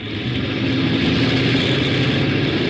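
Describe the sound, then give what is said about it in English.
The port engine one of an airliner, Skyliner Flight 35, starts up during pre-takeoff checks: a loud steady drone, a thick rumbling hum with a buzzing mid-range edge that holds an even level throughout, with no voices. “Check for takeoff. wing flaps, rudder, rudder, port engine one.”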